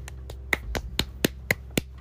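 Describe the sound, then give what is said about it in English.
A woman claps: a steady run of about eight sharp hand claps, evenly spaced roughly four per second, each a crisp bright smack over a low background hum, with no talking. “She's fucking clapping.”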